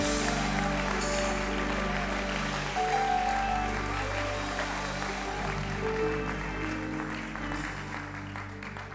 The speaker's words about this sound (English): Would you clap your hands unto the Lord and give God a shout of praise one more time?